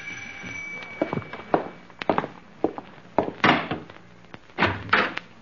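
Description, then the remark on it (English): Several sharp wooden knocks land in scattered bursts, followed by the rattle and thud of a door being opened, with no one speaking. “That's funny. No one's at the door.”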